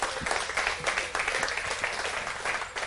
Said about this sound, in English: Come on, clap for the Lord. Amen.